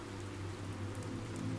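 Steady, even rainfall with a soft continuous hiss across the whole clip, layered over a low, constant rumbling drone. No voices, and the level stays flat throughout.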